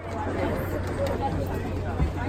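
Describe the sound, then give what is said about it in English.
Dense crowd chatter, many overlapping voices blending into a steady, unbroken murmur with no single speaker standing out, fairly loud and even throughout, from crowds at the Frieze New York art fair on Randall's Island surrounding a Red Grooms piece, a life-sized caricature of an MTA bus. “On Randall's Island, crowds surrounded a red groom's piece, a life-sized caricature of an MTA bus.”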